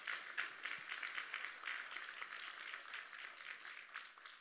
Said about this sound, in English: Let's give the Lord a clap offering because God does what he say.